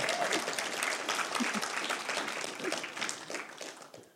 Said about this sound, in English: Well, let's give Pastor a round of applause.